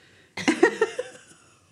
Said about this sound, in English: Sorry. Was that meant to be a sneeze or a cough? I was trying to hold it back for so long.